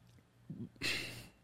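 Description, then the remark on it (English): A quick sip of a drink: a short low gulp, then a breathy, hissing exhale lasting about half a second. No talking. “Let me take a sip here.”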